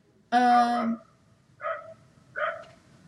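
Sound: dog barking outside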